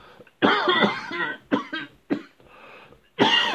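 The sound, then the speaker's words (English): Four loud coughs with short pauses between them: a long, rough, hacking first cough, two quicker sharp ones, and a final forceful burst. No talking. “Sorry about the cough and the knocking on the wall.”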